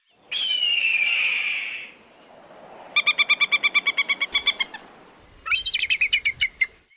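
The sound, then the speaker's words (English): Three raptor calls in sequence: a long, drawn-out descending hawk scream, a fast series of sharp, piercing falcon notes, then a brief, high chattering eagle call, each loud with no talking. “Specifically, a hawk, a falcon, and an eagle.”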